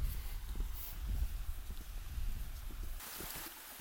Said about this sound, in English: So even though I'm above the tree line and above the clouds, I'm next to a very fast flowing waterfall.